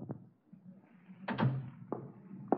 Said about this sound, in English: Look, close the door and sit down. This will only take a few moments.